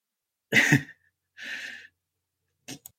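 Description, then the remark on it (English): A single loud cough, then a breathy rasping exhale and a brief, quieter cough near the end, with no talking around them. “Sorry, I coughed there.”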